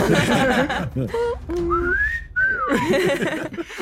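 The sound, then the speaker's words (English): A slide whistle glides upward in a thin, bright tone, then swoops back down, loud, with people talking just before and after it. “Last guy had a slide whistle.”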